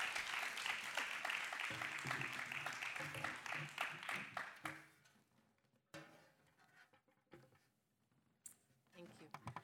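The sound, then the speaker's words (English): An audience claps for a woman about to share her story and testimony, steadily in a dense, crackling burst lasting several seconds, then the applause thins out and fades as a voice begins speaking over the last few scattered claps. “Let's clap for her, make her kind of ease a little bit.”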